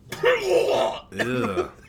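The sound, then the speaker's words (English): A person vocally imitates a man's harsh, wet open-mouthed cough after he takes a drag of a cigarette and blows it out: two loud, raspy bursts in quick succession, with a throaty, phlegmy rumble and no talking around it. “The nastiest cough. Just so unaware of anybody else around him. Open mouth.”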